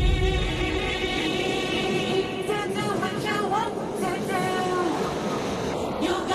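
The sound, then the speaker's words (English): A steady, loud rumble with a rhythmic rattling and metallic clatter, like a train rolling past, with faint voices murmuring underneath throughout. “Train going by.”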